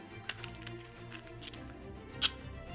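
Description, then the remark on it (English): Sharp mechanical clicks of a lighter being struck to set a table doused with lighter fluid on fire: a faint click early on, a few softer ticks, then one loud, crisp snap near the end, all over a low background hum. “You really don't have to light the table on fire.”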